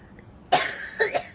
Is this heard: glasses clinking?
no